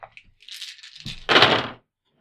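dice being rolled

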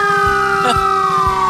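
fire truck siren

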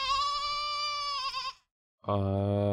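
goat bleating

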